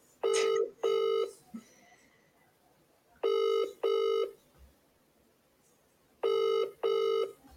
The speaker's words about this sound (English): I'm ringing right now. Since I'm ringing right now, just for me to double check if the show's going on. If he answers, fingers crossed.